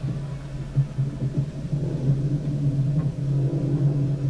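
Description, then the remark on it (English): A car's engine rumbles low and steady as it pulls in, a continuous deep drone with a faint rise in loudness toward the end and no voices. “And that would be a live feed of them pulling in.”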